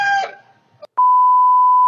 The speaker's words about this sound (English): See, there's some bleeps.